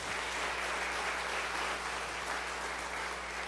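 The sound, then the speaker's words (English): A church audience claps steadily for a few seconds after a testimony given in Spanish and English, a dense, even wash of many hands with no voices over it and no break in the applause. “Yeah, y'all can clap.”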